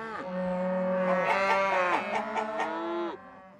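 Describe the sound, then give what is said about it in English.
Several cows moo in a loud, overlapping chorus, their drawn-out bellowing calls stacking on top of one another for about three seconds before fading out, with no talking. “All those in favor say aye in whatever language you speak.”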